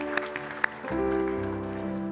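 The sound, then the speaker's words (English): An audience claps for the Lord Jesus at the close of a service after the blessing, with a couple of sharp claps first, then a wash of applause rising under loud, sustained organ-like chords that hold steady to the end. “Give the Lord Jesus a hand clap today.”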